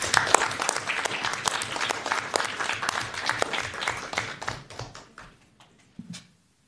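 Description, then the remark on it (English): A crowd gives a round of applause for newly introduced members, clapping steadily with many overlapping hand claps, strong for several seconds before thinning out and fading to a few scattered final claps. “And those are our new members introduced, so if everyone would join me in giving them a round of applause.”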